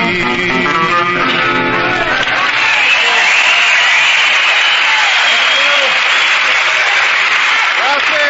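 A song's final sung notes fade into loud, sustained applause from a live crowd with people from just about every state in the 48, a dense steady wash of many hands clapping that continues unbroken to the end.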